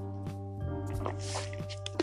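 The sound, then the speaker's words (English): Someone takes a sip of water: a few soft, wet slurping and swallowing clicks spread over two seconds, quiet against a steady low electrical hum. “Let me take a sip of this good water.”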